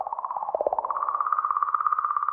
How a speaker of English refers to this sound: The sound you're hearing reveals unexpected oscillations in the magnetic field around the comet